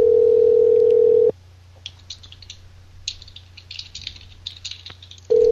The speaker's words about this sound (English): I love, like, live prank calls because you can just hear phones ringing for minutes at a time.